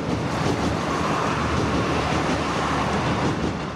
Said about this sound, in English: But just behind the house runs a railway line. The Dublin-Sligo line. The train will be a soundtrack to his personal life.